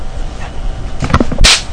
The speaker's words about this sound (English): I was trying to get your attention. Slap!